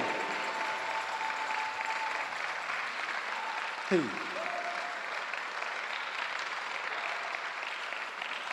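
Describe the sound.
An audience claps steadily as a clap unto the Lord, a dense, sustained wash of applause from many hands at an even loudness, with a brief voice or tone cutting through midway.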